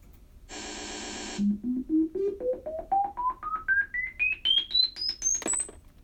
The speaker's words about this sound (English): Okay, now you're going to hear some loud beeps. Yep, you got it.